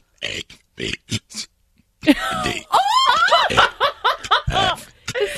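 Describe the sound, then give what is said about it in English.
A man burps on command, a quick series of short, gravelly burps shaped like the spoken letters A, B, C, without drinking a carbonated beverage, followed by loud, squealing laughter and excited voices. “I can do the whole alphabet. But you just burp on command?”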